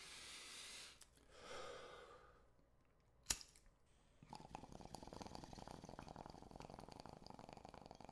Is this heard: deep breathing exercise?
yes